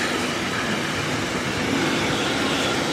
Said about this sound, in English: That's a long train. Sorry for that. That's what you get when you live on the main railroad from Antwerp to Cologne, where there's of course a lot of freight going from the Antwerp harbor to the industrial area in the North Rhine-Westphalia